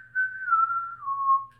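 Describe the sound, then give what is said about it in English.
A person imitates the whistling of a zombie in a movie: a short, wavering tune, a single sustained tone that slowly slides downward over about a second and a half, clear, with no talking. “Remember when it shows Sally again and he's a zombie and he's like whistling? It's like...”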